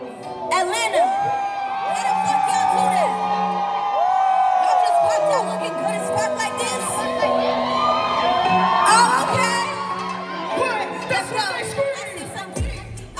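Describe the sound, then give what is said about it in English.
A large, dense crowd at the Afropunk festival cheers and yells continuously for a performer on stage, yelling her name and singing her song, with high whoops and shrieks rising over a steady roar of many voices, loud throughout, swelling midway before tapering at the end. “Everybody was like hyping her up, like yelling her name or just like singing the words to her song.”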